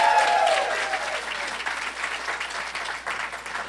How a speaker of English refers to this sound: Thank God for our amazing pastors this morning. Amen. That was not a sufficient clap for our pastors. Let's thank God for them this morning.